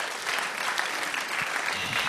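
Steady audience applause fills the whole clip, a dense, even wash of many hands clapping at once without pauses or voices on top.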